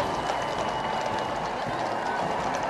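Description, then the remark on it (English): A large crowd cheers and murmurs in a steady, continuous roar, with many voices blending into a dense wash of sound and no single voice standing out, reacting to the Duke and Duchess of Edinburgh and their children in an area lined by uniformed civil organisations, including the St John Amis. “This area, which is lined by the uniformed civil organisations, including the St John Amis, you can hear the crowd reacting to the Duke and Duchess of Edinburgh and their children.”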